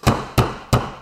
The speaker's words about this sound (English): and I hear someone knock at the door.